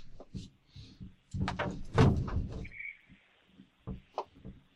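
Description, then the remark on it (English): A sliding door that slides into the wall is pushed shut on a tiny square room lined with acoustic tiles in Minnesota, a rumbling, scraping roll lasting about a second, framed by several dull knocks and thumps before and after. “But there's this piece of crap door that is a sliding door, so it slides in and out.”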